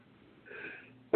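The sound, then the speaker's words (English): A single sneeze: a short, breathy intake of air builds briefly, then a sudden loud burst cuts in at the very end, with no talking. “Pardon me. Bless you.”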